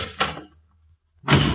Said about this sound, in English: I'll make believe I'm going out the front door.